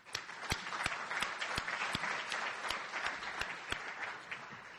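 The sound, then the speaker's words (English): An audience at a Mitchell Institute event applauds the people who organized it, a dense wash of many hands clapping with a few sharper individual claps standing out at an uneven rhythm, sustained at an even moderate loudness throughout. “And I just want to take an opportunity, because I know I'm the last speaker, to have a round of applause for the folks who actually did all of the hard work in putting this together.”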